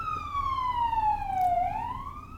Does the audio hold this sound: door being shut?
no